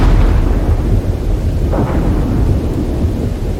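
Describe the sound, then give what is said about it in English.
Loud thunder from a big lightning bolt striking not far away during a storm, heard from a plane in flight with heavy rain hitting it: a deep, continuous rumble heavy in the low end with a brief brighter surge partway through. No one speaks. “At one point, this big bolt of lightning comes down and it is not far from you.”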